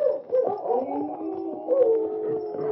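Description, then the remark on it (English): Several dogs at Larson's cabin howl together in long, wavering, overlapping cries, sustained without a break. No one speaks. “For several minutes, the only sounds came from the horses' hoofs and the dogs at Larson's cabin.”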